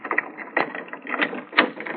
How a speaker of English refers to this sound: if you will unlock the door for us. Just a moment till I find my key. Here we are.